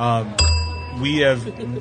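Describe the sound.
A single bright bell ding rings out sharply and lingers with a sustained metallic tone, while a person keeps talking underneath and around it.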